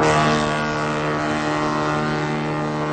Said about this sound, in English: Could I hear the foghorn?